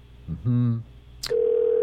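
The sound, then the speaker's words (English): A short voice is followed by a click, then a steady telephone ringback tone that hums on, loud and unbroken, through the end as the call goes unanswered. “Man, just keeps Man, ringing.”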